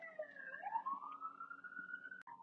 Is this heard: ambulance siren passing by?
yes